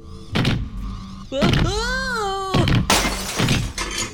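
A lamp, hit by a character walking on super stilts, topples and shatters, and a bookshelf is knocked over: a few sharp crashing thuds, a wavering whining tone in between, then a loud, bright burst of breaking glass and clattering debris.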